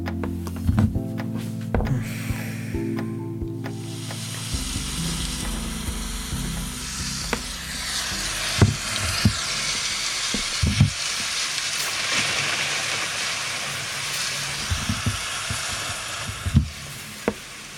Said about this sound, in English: When I was finally set up, I realized I was going to have to turn to my relaxing rain sounds app, which I'd been using to sleep when coronavirus existential dread was keeping me awake.